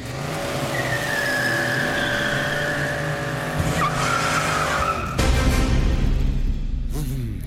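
A car skids with a long, loud tire squeal, high whining tones sliding over a heavy engine roar, followed by a rougher burst of engine noise near the end.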